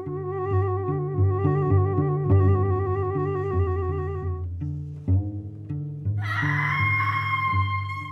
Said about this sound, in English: That screaming. We should go. Those poor children are all alone out there.